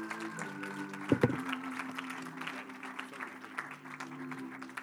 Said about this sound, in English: So we're glad to have them with us today. Would you put your hands together?